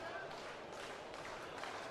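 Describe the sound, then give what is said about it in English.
A large baseball stadium crowd roars and cheers before a full-count pitch with two outs in the top of the sixth inning of a 1-1 BYU game, in a dense, continuous wash of sound that swells in waves, with no single voice standing out. “The crowd comes alive.”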